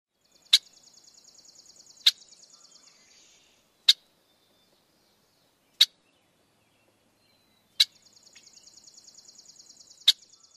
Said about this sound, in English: And finally, the typical chuck call of the red-winged blackbird.